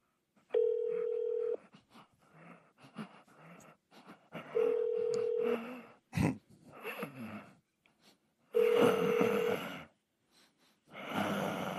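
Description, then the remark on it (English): A telephone line rings out in three steady, evenly spaced buzzing tones, each about a second long, during a call to Motel 41, with muffled voices and handset noise filling the gaps between rings. “If you know your party's room number, you may dial it at any time.”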